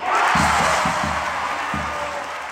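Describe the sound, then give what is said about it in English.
A dense, roaring crowd at a basketball game between Indiana and Iowa cheers steadily, with low thumping bursts, like stomping or a dribbling ball, punctuating the din several times. “That was the crowd at last week's game between Indiana and Iowa.”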